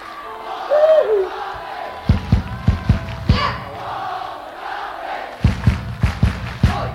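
A large concert crowd chants back in unison, punctuated by bursts of rhythmic group clapping. The sound is loud, with no single voice standing out.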